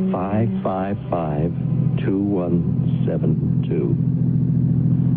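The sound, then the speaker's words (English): A dark gray car's engine hums steadily at a low pitch throughout, a constant droning rumble from inside the moving vehicle, with voices talking over it. “Car runs nicely, doesn't it?”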